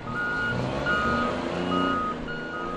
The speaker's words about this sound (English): Trucks and cranes spring into action as a 900-foot-long container ship docks here at the Port of Oakland.